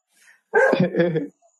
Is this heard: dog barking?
yes